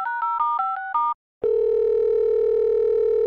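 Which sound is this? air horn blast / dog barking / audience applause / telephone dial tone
telephone dial tone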